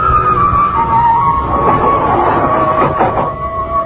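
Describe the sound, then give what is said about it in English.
An elevator car rises with agonizing slowness, with a steady mechanical hum and a sustained whining tone, a few faint rattles and clunks breaking through near the end, with no voices. “Peering at me furtively as the elevator moved upward with agonizing slowness.”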